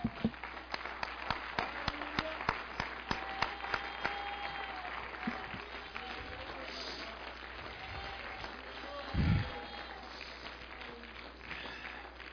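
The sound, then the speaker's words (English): An audience bursts into dense, steady applause, many hands clapping in a fast, overlapping patter that holds at a strong level for several seconds with a brief low thump midway. “I'll give him a hand clap.”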